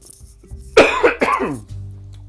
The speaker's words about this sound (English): I was told to cover the mic when I cough. I'm sorry, guys.